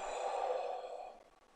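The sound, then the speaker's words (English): A long, steady inhale as someone draws a drag of weed smoke, a breathy rush lasting about a second before it tapers off into quiet. “That was a pretty good drag, though.”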